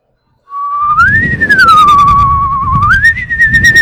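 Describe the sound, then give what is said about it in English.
A person whistles a short, simple tune, the pitch gliding up, holding, dipping and rising again over a few seconds, with a breathy rumble underneath and no talking. “I like to whistle, though. All right, let's give it a go.”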